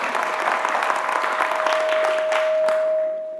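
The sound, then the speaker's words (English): A crowd claps steadily in a dense, sustained round of applause for a woman who gave a reading and hosted the morning gathering for the first time. The applause fades slightly at the end, with a steady high-pitched tone, like microphone feedback, humming underneath throughout. “Well done, let's give her a round of applause.”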